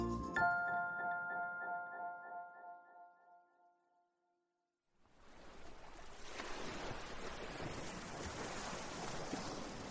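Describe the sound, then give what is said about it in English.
A ringing chime fades out, then after a brief silence a loud, steady wash of ocean waves breaking on a beach fills the rest, with no voices. “We're at the beach. Wow, look at those ocean waves.”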